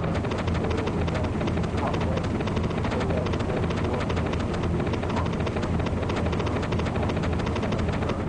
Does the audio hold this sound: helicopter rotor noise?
yes